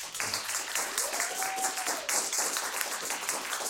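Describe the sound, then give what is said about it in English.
Steady applause from an audience fills the whole stretch, a dense crackle of many hands clapping at once, with a faint whistle-like tone gliding up and back down partway through. “But I think let's have a round of applause because these guys have worked hard.”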